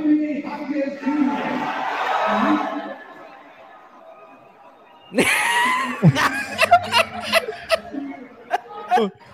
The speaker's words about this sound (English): Let's see the live reaction at the arena when the number 18 pick was announced.